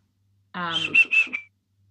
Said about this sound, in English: Oh my god, a bird! Yeah, what a beautiful bird song as well.